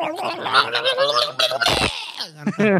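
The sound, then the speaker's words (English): A voice imitates a charging rooster with a gargly, warbling run of crowing sounds, broken by a harsh hissing burst like a train, then a few rising squawks. Loud throughout, with no other talking. “It sounds like a train and a rooster mixed together.”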